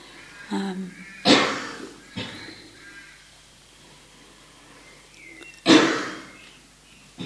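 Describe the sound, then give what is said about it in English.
A person coughs several times: a small cough, then a loud harsh one, a short cough soon after, and another loud cough following a pause. “I know how it is with coughing.”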